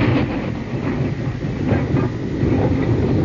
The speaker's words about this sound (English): Oh, yeah, that's a record of a train in West Virginia. It is. It's an authentic record of a train in West Virginia.